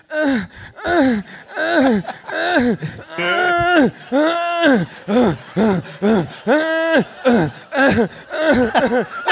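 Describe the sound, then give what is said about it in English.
A voice imitates a secret agent's heavy sexual panting and whimpering from a slow-motion film scene: a rapid, steady series of breathy, pitched gasps and moans, loud, continuing throughout with no speech. “And the only thing you hear is his heartbeat and his aggressively, increasingly more and more sexual panting.”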